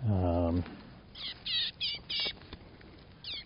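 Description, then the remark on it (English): A chickadee being freed from a bird-banding net scolds with a series of short, harsh, buzzy calls in quick bursts, fairly loud, after a brief human voice at the very start. “He's yelling at me.”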